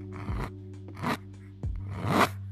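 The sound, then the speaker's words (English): A pen scratches across a rough, textured canvas while drawing, in three short, raspy strokes, the last one longer, fairly quiet over a steady low hum. “It's my pen going over.”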